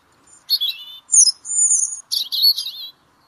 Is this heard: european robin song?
yes